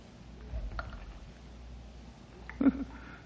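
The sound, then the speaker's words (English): Water drips deep inside a cave: a few faint, scattered drops against a low rumbling background, with one slightly louder splash near the end. “Hey, what's that dripping I hear? Could be an underground spring, I reckon. Or moisture on the roof of this.”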